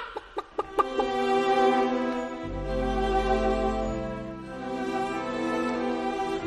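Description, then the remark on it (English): A chicken clucks, starting with a few quick, sharp clucks and then breaking into longer, drawn-out squawking calls. No one speaks. “And a chicken might peck it and make him jump up in the air.”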